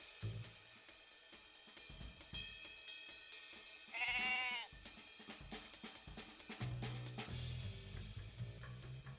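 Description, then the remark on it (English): A full-grown goat lets out one loud, wavering bleat partway through, lasting about half a second, set against a busy background of clattering, rhythmic noise. “For this experience, take the closest thing to a preschool child you can find. A full-grown goat is an excellent choice.”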